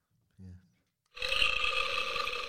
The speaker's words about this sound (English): I don't know what that one is. Scary burp. You're hungry for content. It's like a guttural zombie.